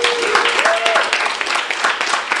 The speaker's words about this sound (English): Let's please give him a warm round of applause.